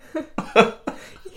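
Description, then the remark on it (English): A person demonstrates a few short, voiced coughs and throat-clearing sounds, three fairly loud bursts in quick succession with no talking in between. “Like, just cough and clear your throat.”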